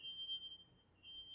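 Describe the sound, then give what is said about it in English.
A work truck backing into a parking space at night sounds its reversing beeper, a thin, high-pitched electronic tone held almost steadily throughout, faint against a low background hum, with no voices. “That, oh well, oh, somebody's backing up.”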